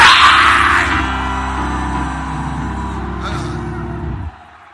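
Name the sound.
audience shouting and screaming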